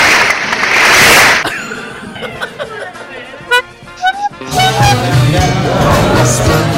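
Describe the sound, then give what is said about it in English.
A short burst of applause-like clapping opens loudly with a dense, hissy wash, then gives way to scattered sharp snaps amid chuckling and other busy sound effects. “Where's that clapping sound?”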